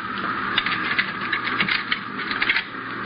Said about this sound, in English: Now here, pick up these keys and open that door. Go on.